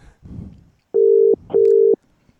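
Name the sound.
phone call ringing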